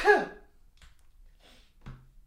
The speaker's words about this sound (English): Oh, I'm about to sneeze.